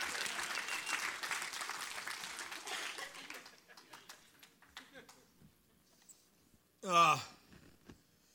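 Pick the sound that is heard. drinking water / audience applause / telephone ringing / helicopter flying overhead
audience applause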